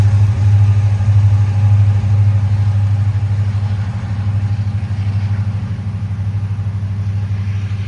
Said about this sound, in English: I actually love the sound. I'm gonna pause here so you can hear the sound of the train as it goes through.